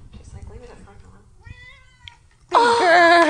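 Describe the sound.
A cat named Mimi lets out a loud, drawn-out meow near the end, preceded by softer harmonic mews and faint murmuring voices in the background.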